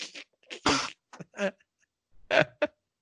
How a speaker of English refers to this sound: Like he's crying from coughing, not like crying from pain. Just he's coughed so much, he's starting to tear up and cry.